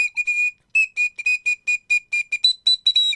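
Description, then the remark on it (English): A short news-style jingle whistled as a quick, bouncy run of about a dozen clear, high notes, mostly on one pitch and stepping up near the end, with no talking. “News-ish jingle.”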